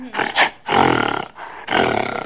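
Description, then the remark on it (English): A male mountain gorilla vocalizes in three loud, rough bursts, deep roaring calls that surge and break apart, with short pauses between them and no talking. “Now he's getting a little more wound up.”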